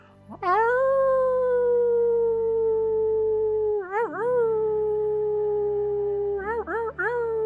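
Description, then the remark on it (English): A person lets out a long, loud wolf-like howl at the wolf moon, holding a steady wavering pitch for several seconds, with brief upward yelps breaking in near the end; unaccompanied by talk. “One more time, howl as loud and as intentional as you can. Howl, my friends, at this wolf moon.”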